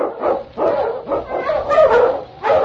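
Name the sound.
sled dog barking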